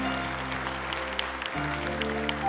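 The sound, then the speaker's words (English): An audience claps steadily after a song in a dense, continuous patter, while sustained keyboard or organ chords hold underneath throughout the brief stretch. “You can clap for that if you want.”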